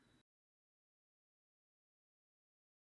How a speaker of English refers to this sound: And once again, we apologize to our Apple and Spotify listeners. The audio cut out just a bit, but you didn't miss anything.